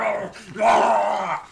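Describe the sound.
A person's voice imitates a snarling growl, a short rough rise then a sustained, loud, raspy rumble lasting about a second before trailing off. No other sounds accompany it.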